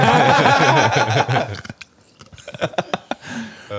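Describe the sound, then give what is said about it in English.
Someone chews ice cubes, a loud dense burst of grinding chews followed by a few sharp, scattered crunches with brief pauses between them. “You guys ever chew on your ice?”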